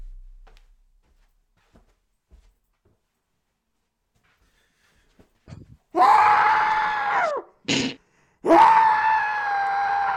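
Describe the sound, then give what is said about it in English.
After several seconds of near silence, a man lets out loud, strained screams into a pillow: one long howl, a short burst, then another sustained yell, slightly muffled. “I just screamed into a pillow.”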